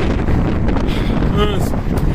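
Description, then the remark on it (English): Strong gusts of wind outdoors on a very windy day buffet the microphone with a constant low rumbling roar, steady throughout, with faint traces of a voice underneath. “I did not know it was going to be this windy outside today.”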